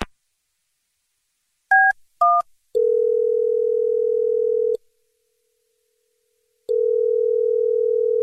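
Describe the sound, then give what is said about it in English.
Two quick keypad beeps, then a phone ringing with an incoming call: a long, steady electronic ring lasting about two seconds, a pause, and a second ring starting, clear with no voices. “Like, who's calling my phone?”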